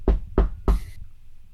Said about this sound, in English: At this point, there is a knock at the door.